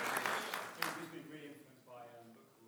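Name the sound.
brief clapping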